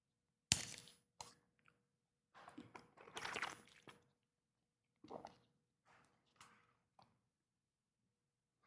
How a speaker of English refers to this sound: I got a bottle of water here. Hold on just a second. I'm going to take a drink.